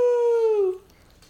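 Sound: dog howling and whimpering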